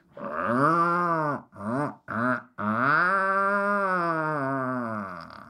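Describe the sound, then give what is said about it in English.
An Atlantic puffin gives a deep, drawn-out growling call, a call between a mated pair, broken by two short grunts before another long, moaning growl. It is loud, with no talking. “Later in life, they have a deep growling call. They sound sort of like this.”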